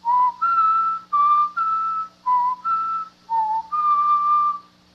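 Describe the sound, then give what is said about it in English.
A person whistles the notes of a musical theme, B-E-D-E-E-B-E-A-D, by the statue of the Venerable Bede: about nine clear, sustained notes stepping up and down in pitch with brief gaps between them, fairly loud with no talking. “Let me see if I can whistle those notes written in the musical theme.”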